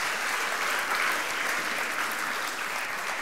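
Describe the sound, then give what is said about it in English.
A crowd claps steadily, a dense wash of many hands at a constant loud level with no single claps standing out, continuing unbroken throughout, applauding people coming onto a stage. “And so this is less about like applauding, well done for going to Berlin.”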